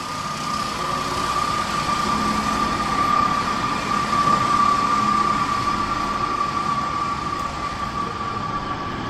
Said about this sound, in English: The power of a train arriving sounded over the platform. This is what hundreds of commuters hear over a coffee as they wait for their train to pick them up.